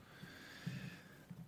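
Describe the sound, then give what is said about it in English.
Heavy snorting breaths, low and rough, come in short bursts with a gravelly rumble; two or three grunting snorts stand out against a faint steady hiss. No one speaks. “I'm already doing it because I know you can bet your bet deuce and you start breathing like that.”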